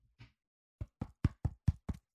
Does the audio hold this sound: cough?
no